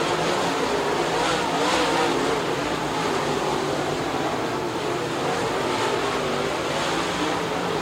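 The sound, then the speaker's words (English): Loud, continuous engine roar from several race cars running together on a dirt track, a dense steady drone with slight surges in pitch as they push around the track, no gaps or pauses, as Ferree chases Flinter down the backstretch with four laps to go. “Diamond move for Ferree in one and two, and he chases Flinter down the backstretch as they reel in the tail of the field, which is now Gary Lyle.”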